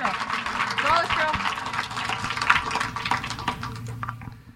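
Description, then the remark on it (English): A crowd applauds the effort of two participants in a dense, steady patter of many hands clapping, with a few whoops and voices mixed in, holding fairly loud for several seconds before tapering off at the end. “A round of applause for the effort.”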